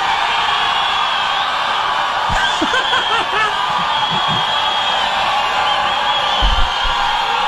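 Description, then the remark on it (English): A large crowd cheers loudly and steadily for Mayor Pete for the whole stretch, a dense roar with scattered whoops, yells and a few laughs rising out of it. “Crowd goes wild for Mayor Pete.”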